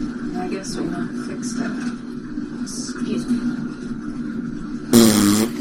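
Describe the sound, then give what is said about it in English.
A loud, sputtering fart from a man bursts out near the end, brief, after several seconds of low droning background noise with faint murmuring voices. “Did he just fart? I think he farted.”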